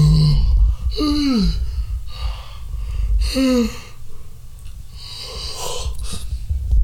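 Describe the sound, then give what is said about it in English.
Breathy yawning: a couple of drawn-out voiced yawns with sliding pitch, separated by deep inhales and exhales. The first sounds put on, and it eases into a genuine, long yawn. “well, at first that was like a fake yawn and then turned into a real yawn.”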